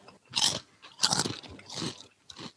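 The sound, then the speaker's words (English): Loud, crisp crunching of a strong-smelling, fish-tasting snack being bitten and chewed: about four bursts of crackly chewing, each lasting a fraction of a second, with short pauses between them and no voices. “Take a taste.”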